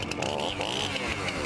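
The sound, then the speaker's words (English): A chainsaw's small gas engine revs loudly, its buzzing pitch rising and falling in quick surges, throttled up for a moment and a half. “My chainsaw's ready to rip up some regulations.”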